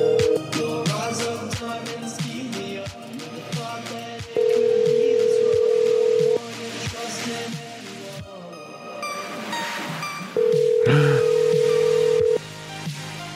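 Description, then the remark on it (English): A telephone dial tone sounds while calling a phone number, in long, steady mid-pitched bursts of about two seconds, repeating with pauses between, over a cluttered background of soft clicks and taps. “I bet these are all wrong numbers, but I like calling them anyway.”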